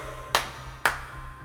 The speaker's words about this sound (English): Because 5:45 in the morning screaming and clapping about Daredevil is hey. Insane.